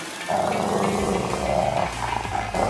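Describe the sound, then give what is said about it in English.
A dog growls low and menacingly in one continuous rumble, fairly loud, swelling slightly for a couple of seconds with no voices present. “The guys growled at Lane like menacing dogs.”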